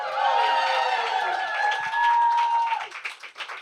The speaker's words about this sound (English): So, welcome to Masala Podcast Live. Give me a big cheer.